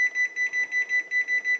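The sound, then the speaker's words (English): A kitchen timer beeps in a quick, steady series of short, high electronic tones, fairly loud, with no one talking, as it is being set to 20 minutes of cook time for a pizza in the oven. “And I'm going to set a timer.”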